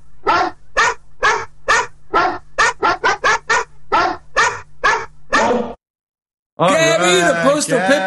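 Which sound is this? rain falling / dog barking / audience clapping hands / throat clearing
dog barking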